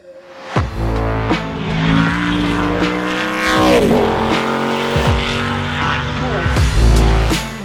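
Jimmy Ford's Pikes Peak Hill Climb race car, named Bronxzilla, revs hard, roaring through rapid gear changes with sharp rising and falling pitch sweeps, loud and continuous, with tire squeal hints and no talking.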